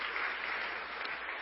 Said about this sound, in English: I know we've already applauded you a couple times, but I feel like I can't not do it here on Father's Day. Can we put our hands together, give our dads a huge hand, and love you guys.